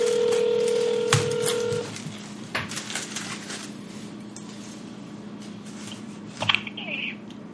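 A steady electronic phone tone holds for about two seconds, then cuts off into faint clicks and handling noise, with a brief beep-like chirp near the end.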